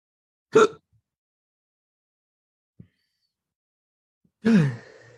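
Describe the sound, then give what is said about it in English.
Two sharp, breathy, loud gasps for air after holding breath, separated by a few seconds of near silence with a faint click between them; the second gasp is longer and trails off. “Can't hold your breath for more than a minute?”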